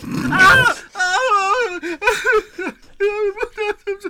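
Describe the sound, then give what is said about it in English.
A creature screams in a series of loud, wavering wails, its pitch wobbling up and down, broken into several anguished bursts with short gaps between them. “And then it starts to scream.”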